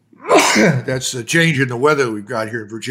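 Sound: sneeze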